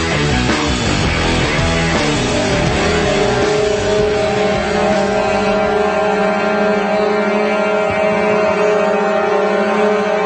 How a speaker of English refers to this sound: That eerie sound made by the horns of thousands of trucks and other vehicles, the capital of the besieged nation of Canada under Klaus Schwab, UN control. That eerie sound is the sound of warning to the establishment, the warning to the occupiers.